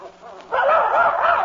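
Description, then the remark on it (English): A young boy imitates a dog, letting out one loud, drawn-out bark-like yowl after a brief quieter moment. “Now he thinks he's a dog.”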